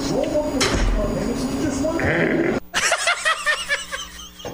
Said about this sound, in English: You wait for the growl, and it's always better than you remember.